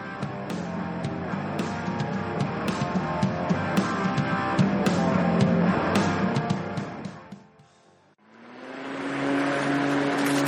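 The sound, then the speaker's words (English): A lawn mower engine drones steadily with scattered sharp clicks and rattles as grass is mowed, then briefly cuts out before revving back up at a higher, steadier pitch. “You're mowing the grass on a Sunday afternoon and suddenly a stone flicks up and ruins your day by smashing a window or a pane of glass in your lovely greenhouse.”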